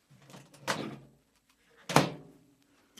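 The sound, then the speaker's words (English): A microwave door is opened with a clunky latch release to take out marshmallows warmed for 30 seconds, followed by a second, sharper thunk about a second later, then a faint click. No one speaks. “Let me pull them out of the microwave.”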